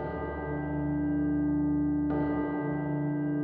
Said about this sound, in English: He was endeavoring to pierce the darkness with his ferret eyes when the chimes of a neighboring church struck the 4 quarters. So he listened for the hour.